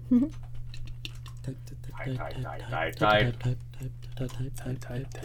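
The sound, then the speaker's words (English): Quick, uneven clicking of computer keys as someone types to look up a name, with a steady low hum underneath and a person speaking briefly over the tapping. “I'm bad at typing.”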